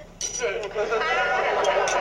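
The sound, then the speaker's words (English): Breakfast dishes dropped into a sink, clattering and rattling for about two seconds with several sharp, bright clinks of china and cutlery striking each other. “Of course, while Ted and Joan are going over this list, Vicky is collecting all the dishes from breakfast, and Joan says, just drop the dishes in the sink, hence, drop, as in she did say drop”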